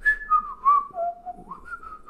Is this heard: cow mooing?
no